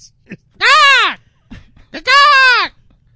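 Two loud, drawn-out calls of the Cape Barren Goose, a goose found almost only on Phillip Island, each a nasal, bleating honk that rises then falls in pitch, separated by a short pause with faint low noises in between.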